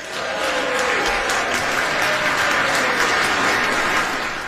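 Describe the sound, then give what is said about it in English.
Steady applause from socially distanced, fully vaccinated members of the House during a speech, dense and sustained clapping at an even loudness for several seconds with a faint murmur of voices underneath. “And the inexplicably socially distanced, fully vaccinated members of the House applaud wildly.”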